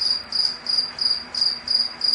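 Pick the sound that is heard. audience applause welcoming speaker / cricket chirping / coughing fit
cricket chirping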